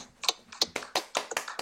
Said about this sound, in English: And before we get going, boys, I just want you to clap it up a little bit. These are the fellas that made the playoffs.